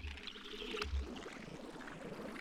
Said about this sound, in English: I think this is just bubbles. I probably turned the tap on. Yeah. And I've put it through a phaser. Right. And then a little resonator as well.